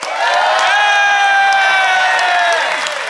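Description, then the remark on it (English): A loud, sustained standing ovation from a live audience applauding to vote for one side: dense applause mixed with cheering and high whoops, holding steady for the whole few seconds without any speech over it. “It's a strong and long there. A standing ovation.”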